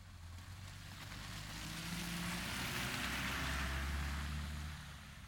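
A truck's engine rumbles with a low, steady drone and broad road noise as it crosses a frozen river on a winter ice road, growing louder as it draws near and passes by, with no voices.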